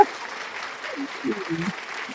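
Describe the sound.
An applause sound effect played as an audio effect: a steady wash of clapping fills the whole clip at a moderate level, with some voice-like sounds or cheering breaking through in short bursts.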